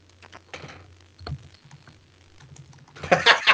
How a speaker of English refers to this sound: I hear typing. 1816. You hear typing. Oh, you're sitting next to me, you dumb fuck. Of course you hear typing. Well, you think it was just a disembodied computer?